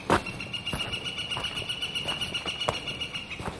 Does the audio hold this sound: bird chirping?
yes